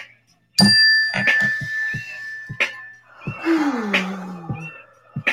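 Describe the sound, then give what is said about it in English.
A single mindfulness bell is struck once and rings with a clear, sustained tone that slowly fades over a couple of seconds, followed by an audible mindfulness breath in and a long sighing exhale. “Mindfulness, let's just take a quick mindfulness breath and a mindfulness bell.”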